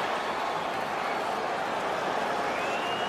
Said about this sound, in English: I have watched a few games that they've broadcasted, and I sometimes will buy into it that there are people there. It's that good. The technology is that good. But how convenient that we have people cheering for this when no one's really there.